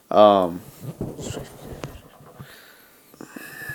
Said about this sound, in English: Typing over there.